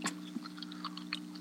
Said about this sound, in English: I've been chewing on peanut butter filled pretzels all fucking night.